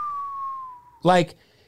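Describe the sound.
A single steady whistle holds one clear high pitch for about a second, sliding slightly lower as it goes, then cuts off into a short burst of voice.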